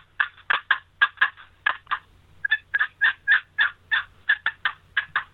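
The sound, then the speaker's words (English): A Real Hen cherry wooden box call is worked in a fast, sharp series of loud turkey-hen cutting notes to locate turkeys, around twenty raspy clucks in quick bursts with short pauses, with no talking. “One of my favorite calls that I love to keep with me in my vest is the Real Hen Cherry box call.”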